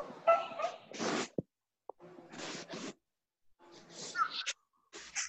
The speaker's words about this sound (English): The dog is there.